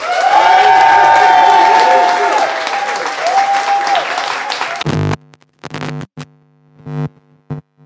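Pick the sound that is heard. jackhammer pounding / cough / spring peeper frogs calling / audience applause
audience applause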